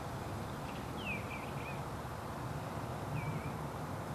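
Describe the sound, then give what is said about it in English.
Bird calls outside: a short cluster of high, sweeping chirps, then a pause and one more chirp, set against a steady low outdoor hum with no one speaking. “I did not put those birds in, for dramatic effect. That's really what's going on out there.”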